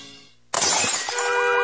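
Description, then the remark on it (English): A window pane shatters with a sudden, loud crash, followed by bright tinkling shards scattering and ringing for about a second. No one speaks. “Do you have another brick through your window?”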